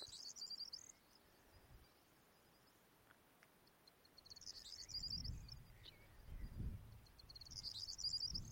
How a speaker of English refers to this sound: There's a corn bunting right beside me. Corn bunting. They're really dumpy birds.